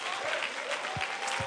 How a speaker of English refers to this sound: Come on, clap your hands. It's going to be a little while. Clap your hands.